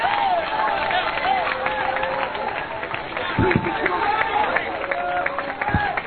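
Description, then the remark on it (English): An audience claps their hands continuously for several seconds, a dense, steady patter mixed with crowd voices and a few sustained vocal tones underneath. “Oh, you're clapping your hands, but you still don't have a concept.”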